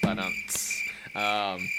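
A steady, high-pitched cricket chirp, played as a sound effect drop, runs continuously through the short clip, while a voice talks over it at the start and again near the end.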